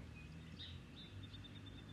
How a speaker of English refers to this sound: Yes. The birds are singing. These birds have harmony and melody.